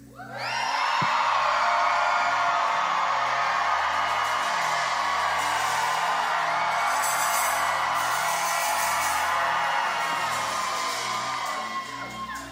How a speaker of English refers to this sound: All right. When the clock starts, y'all scream.